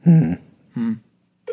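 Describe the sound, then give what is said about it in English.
A phone's ringing tone plays over the line in short buzzy bursts during a call to a bank, repeating with brief pauses and never picked up. It sounds thin and clear, with no one talking. “What kind of bank doesn't answer the phone?”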